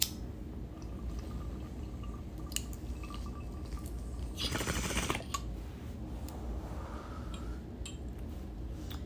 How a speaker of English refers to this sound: I love a good bong rip. I'm gonna ash this right now and repack it for when we take our next rip together, just so I am prepared.